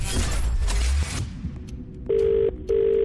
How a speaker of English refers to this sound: One ring. Two rings. Three rings. Four rings.